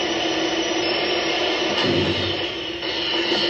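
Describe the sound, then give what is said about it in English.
An overheating electric drill, used to drill in a sauna in a scene with Larry Storch, runs without pause, a loud, steady, strained whine with a harsh buzzing edge and a low hum that wavers slightly partway through. No voices are heard. “And then, like, the guy's very impatient, and Larry Storch is warning him, hey, the drill's going to burn out.”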